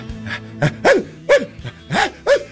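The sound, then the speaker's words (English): A person imitates a panting dog with a quick series of about six short, breathy, yippy huffs, fairly loud, in an uneven rhythm. “What about put some panting in it?”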